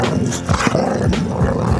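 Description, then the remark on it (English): Basil, a Boxer dog, barks loudly, a rapid string of deep, rough barks blending into a growling, roar-like rumble over nearly two seconds, with no one talking. “You know, I walked Basil the Boxer, and he barked at me.”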